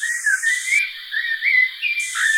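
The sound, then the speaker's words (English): A blackbird whistles a short, clear phrase of sliding, swooping notes that rise and fall almost like a spoken word, fairly loud with no other sounds around it. “And I bet that there are some words that are common in these shows because I recorded one blackbird who was actually saying one word by whistling, like in Silvo.”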